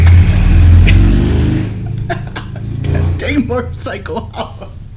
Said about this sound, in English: Motorcycle.